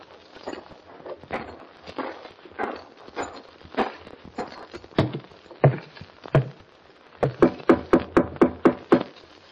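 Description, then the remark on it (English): Hoppy's footsteps thud at a steady pace across wooden boards, fairly loud, as he walks up to Cy Ottoman's door at the Bar 20 ranch house, then give way to a quicker run of sharp, evenly spaced wooden raps near the end. “There was a worried look on Hoppy's face as he hitched Topper to the rail and walked up to Cy Ottoman's door.”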